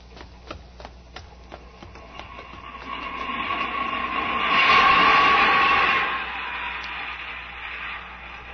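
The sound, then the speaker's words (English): An underground train in a tube station rumbles and rattles steadily, rising to a loud screeching peak with a sustained metallic whine around the middle, then easing off, with rhythmic clicks early on. “Here's the tube. Let's duck down into the station.”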